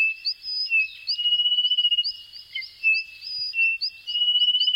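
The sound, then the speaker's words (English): A dense chorus of thousands of small frogs emerging from the lush rainforest at nightfall in Les Pitons du Corbet, the volcanic mountains of northern Martinique: overlapping high, whistling chirps repeating rapidly and steadily over a continuous shrill hum, with no voices. “In Les Pitons du Corbet, the volcanic mountains in northern Martinique, thousands of small frogs emerge from the lush rainforest as night falls.”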